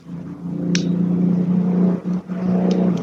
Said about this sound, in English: A car drove by. It just, it sounded like it was here to pick somebody up.